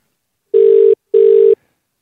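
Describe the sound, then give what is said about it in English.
Two steady, buzzy ringback tones from an outgoing phone call to a listener, placed while a contestant waits to start planking once it is answered, each lasting under half a second with a short gap between, heard clearly with no talking. “Yeah, once the phone gets picked up, you are away.”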